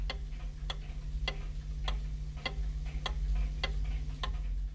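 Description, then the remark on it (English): A mechanical clock ticks steadily, eight crisp even ticks over a constant low hum, with no voices. “With the growth of European cities and the rise of craft industries, a more ordered society was coming into being, ticking to the sound of the mechanical clock.”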